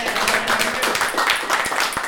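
A small group claps steadily for about two seconds, with overlapping, crisp hand claps forming a dense patter at fairly even loudness and no pauses.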